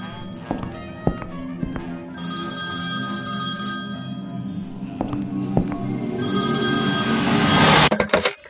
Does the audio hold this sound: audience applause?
no